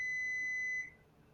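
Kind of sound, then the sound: signal or alarm, electronic beep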